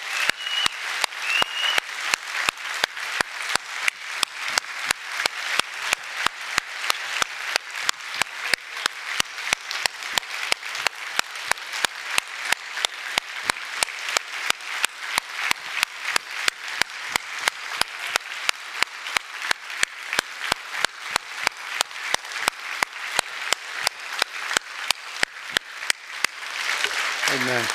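Sustained audience applause, a dense wash of many hands clapping steadily and loudly for nearly half a minute before tapering off at the end.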